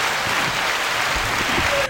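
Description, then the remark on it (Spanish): A steady wash of applause from many hands clapping together, loud and even for about two seconds, with faint voices barely audible underneath. “No alcanzan los aplausos para aplaudirte.”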